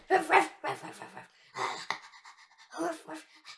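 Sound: dog barking and panting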